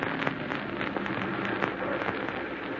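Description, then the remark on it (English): Heavy storm rain pours down on a road in a steady, dense hiss, with scattered sharper pattering drops cutting through the constant wash of noise. No voices. “Driving pretty fast for a storm like this, ain't you?”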